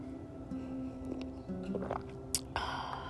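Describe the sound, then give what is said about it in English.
Quiet mouth sounds of someone sipping coffee: a short slurp and soft swallowing noises over a steady low background hum, with no talking. “Take another sip of coffee.”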